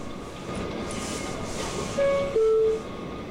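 A Queensbound F subway train at 47-50th Street Rockefeller Center station rumbles steadily, then its electric motors let out a whining tone that steps up in pitch as it pulls away from the platform.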